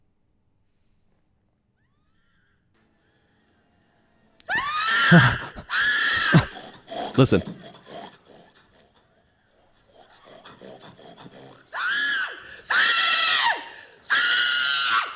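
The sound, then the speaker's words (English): A woman lets out a series of loud, shrill, drawn-out squealing pig calls, in two bursts separated by a brief pause with rustling, each call rising and wavering like a hog's squeal. “Woman pig calling.”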